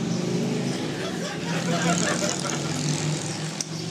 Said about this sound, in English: Hope he's having fun on his motorcycle.